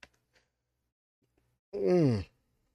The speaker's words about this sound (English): Sorry, not to yawn.